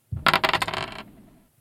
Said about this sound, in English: or roll those dice.